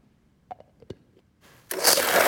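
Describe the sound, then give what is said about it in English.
A few soft clicks and knocks, then a blender roars to life abruptly, crushing ice with lemon juice, orange liqueur and tequila for margaritas, with a loud, steady churning noise that fills the rest of the moment. “And just blend it.”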